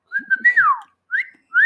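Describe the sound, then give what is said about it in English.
A person whistles a short tune: a sustained note sliding downward, then two brief rising whistles after short pauses, clear and fairly loud with no talking. “Can you whistle?”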